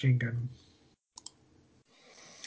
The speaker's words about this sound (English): Typing Marine in. Yeah. Typing Marine in.